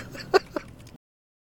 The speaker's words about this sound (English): Sorry, I heard a goose somewhere. Goose. But I don't see a goose. It is a very sneaky goose. Ah, I see the goose now.